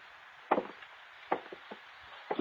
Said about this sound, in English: Okay, where's the study? I'll go with you. By all means. And I'll open the door.